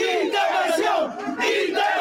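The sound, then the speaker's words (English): A crowd of hundreds chants loudly at a street rally in North Bergen and West New York, New Jersey, supporting reform in Cuba, many voices shouting together in a steady, rhythmic cadence with a dense, continuous roar and no single speaker standing out. “Hundreds gathered on the streets of North Bergen and West New York to show their support for reform in Cuba.”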